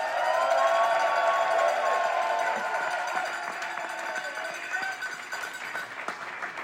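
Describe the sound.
An audience applauds and cheers in a loud, dense wash of clapping mixed with voices, holding steady for several seconds before easing off slightly toward the end.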